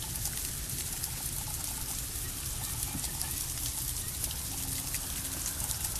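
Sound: ice pellets falling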